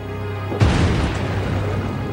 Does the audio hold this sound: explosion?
yes